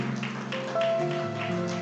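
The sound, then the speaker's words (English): A church audience claps in rhythm on a steady beat over sustained keyboard or organ tones as a man comes forward to the front, the claps landing as soft, evenly spaced bursts beneath the music. “Oh, clap for him as he comes.”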